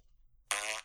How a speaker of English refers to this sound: give yourself a fart. Oh, no.